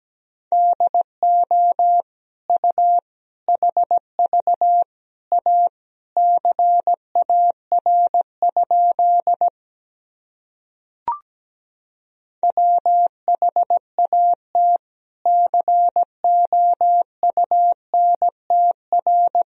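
Morse code practice sentences built from the top 300 words and abbreviations, sent at around 17 words per minute: a single steady mid-pitched tone keyed into quick dots and dashes, broken by a pause of a few seconds with a faint click, then resuming.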